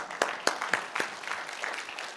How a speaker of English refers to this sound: Let's clap our hands